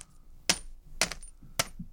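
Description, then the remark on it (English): Coins are thrown onto a crinkly Snyder's of Hanover pretzel bag three times, roughly half a second apart, each a sharp rattling clink with a brief bright metallic ring. Only faint background hiss is heard between the hits. “I think it just sounds like I'm throwing coins on top of a Snyder's of Hanover bag of pretzels because I am.”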